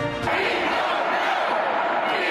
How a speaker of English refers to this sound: Shouts at the State House. Despite demonstration, legislation is moving forward